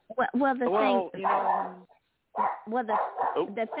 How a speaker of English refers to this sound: my dogs are barking. Ignore them.